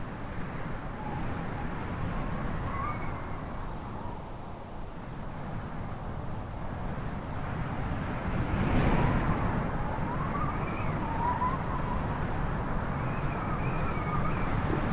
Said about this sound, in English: You hear all that? That is the wind coming straight off the ocean. I am standing right on the edge of the sea. It's a windy day. It is still cloudy. Rain has been letting up.